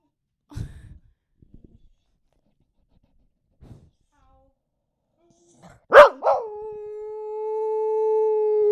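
dog howling

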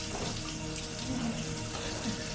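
hot water running

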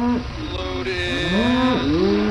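cow mooing

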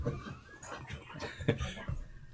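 dogs barking excitedly

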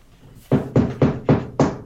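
knocking on a wall

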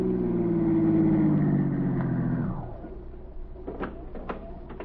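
car pulling up

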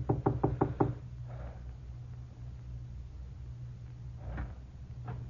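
knocking on a door

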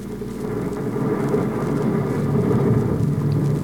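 dynamite explosion

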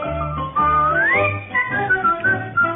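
human whistling a tune

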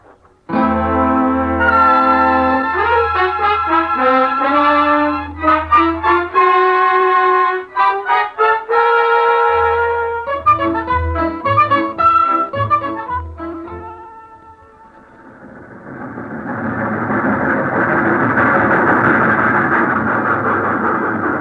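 train pulling into station

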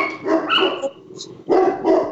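dog barking

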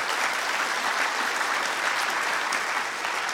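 audience applauding

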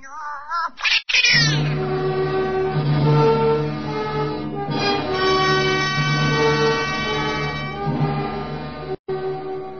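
cat yowling

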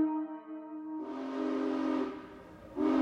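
train whistle

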